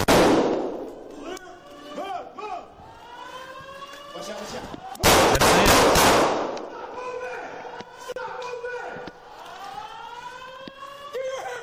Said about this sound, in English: They hear it. They hear the gunshot. They're pushing towards this gunfire.